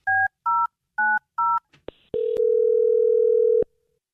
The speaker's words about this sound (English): We're going to dial his phone number right now and see if we can figure it out. Here we go.